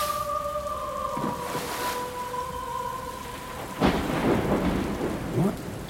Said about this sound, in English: Well, whoever's responsible for it, I'm not particularly thrilled to be floating in a tin can in the middle of the ocean during this storm.